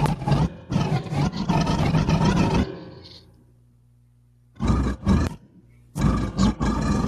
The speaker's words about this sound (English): It's more gorilla than monkey, but you know, close. Yeah, it's called Kong.